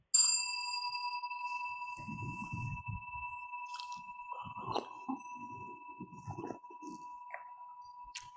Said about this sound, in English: Hey, you're going to, by the way, ring that bell every 10 minutes. Nice and, no, the Incan bell, without the big bell. The Incan bell.